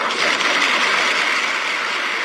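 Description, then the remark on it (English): Ambassador Herzog rips up the sheet of paper a resolution was written on, giving a rough, crackling tearing noise that runs steadily for about two seconds at a fairly loud level, with no voices. “If you noticed, when he was done, right before the clapping, you heard Ambassador Herzog rip up the piece of paper the resolution was written on.”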